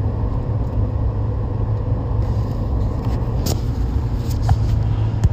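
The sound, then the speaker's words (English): A truck's steady low engine rumble and road noise from inside the cab while driving behind slow-moving vehicles, with occasional brief clicks and rattles, continuous and fairly loud with no talking. “I went and pulled over to fix something on the truck and now I'm behind the slow-ass moving vehicles again.”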